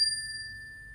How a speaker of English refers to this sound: Sit back, relax, and close your eyes if you can. We're going to have three cleansing chimes.